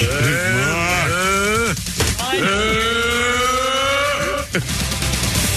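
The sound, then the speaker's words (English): A person does two long, drawn-out vocal imitations of a cow mooing, each a loud, wavering low bellow lasting a couple of seconds, separated by a brief pause. “You were a cow.”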